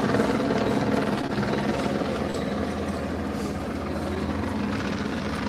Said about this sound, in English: Yeah, it's just a helicopter.